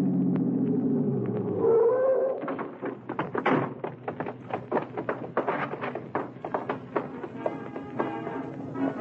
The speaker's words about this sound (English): It was maybe 1:25 when I hit the alley leading to the stage door of the Dodge Theater and twisted the car into it.